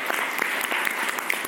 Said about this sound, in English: Thank you very much. Round of applause.